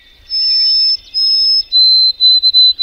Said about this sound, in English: And one bird song that has done that for me since childhood is a bird to listen for now, the white-throated sparrow.